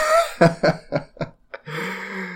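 A loud run of four or five rapid coughs with short gaps between them, ending in a drawn-out voiced wheeze or groan.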